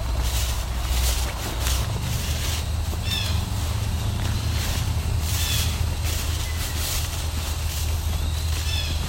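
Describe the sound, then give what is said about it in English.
Eastern wood-pewee and blue jay calls: short, high slurred whistles and cries repeat roughly every three seconds, fairly faint over a steady low rumble and hiss of outdoor background noise. “Eastern woodpewee calling here. Blue jays.”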